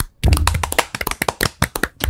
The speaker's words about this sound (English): And as we do at the end of every single bracket, we are going to clap it out.